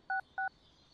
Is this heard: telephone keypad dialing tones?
yes